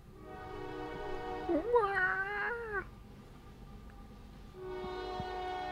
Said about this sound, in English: Hold on 1 second, the train. The evil, evil train.